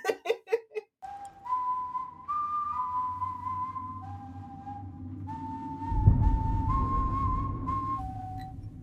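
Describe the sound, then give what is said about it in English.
An eerie, slow whistled tune from a film, announcing a menacing character's presence, of long held notes stepping up and down in pitch over a low rumbling drone, preceded by a few quick breathy, giggle-like bursts. “And that little whistling that announced when he was in the vicinity, I was like, ooh, this shit kind of scary.”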